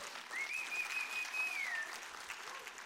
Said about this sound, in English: Go ahead and applaud the Lord just for the heck of it.